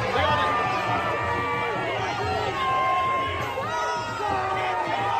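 A large crowd of protesters holding Palestinian flags at the White House yells "break it down" while pushing on the gates and breaking down the fence and barriers, many raised voices overlapping in a loud, steady roar that holds for the whole stretch with no pauses.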